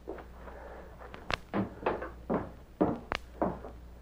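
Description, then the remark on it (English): A wooden house door creaks wide open in uneven, groaning bursts, with two sharp clunks of the latch or frame in between. It is moderately loud, with no voices. “Door wide open.”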